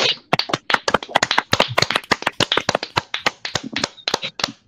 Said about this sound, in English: Let's start by giving us all a round of applause. Oh, yeah.